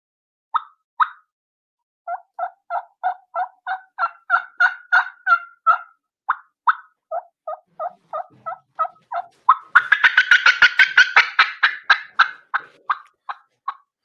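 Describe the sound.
A turkey fly-down cackle imitated with a hunter's call to simulate hens flying down: sharp, clipped yelping notes in a steady run that quicken into a rapid, loud burst of chopping cackles before easing back to spaced notes.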